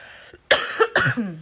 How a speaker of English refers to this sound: I'm not going to apologize to y'all every time I cough. I was about to, but deal with it.